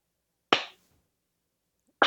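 A slow 80s-style clap: two sharp, loud hand claps roughly a second and a half apart, each with a brief ringing tail and silence in between.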